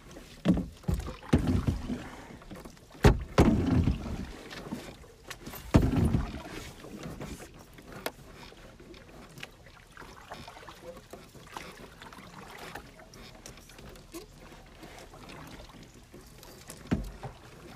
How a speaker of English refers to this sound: Start pedaling back up river. Oh, back up river? Yeah, we're starting to drift. We gotta stay within it.